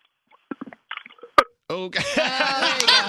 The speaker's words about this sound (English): And look, the DJ burped back at you. That's great. You know, today's DJs, we're full of gas.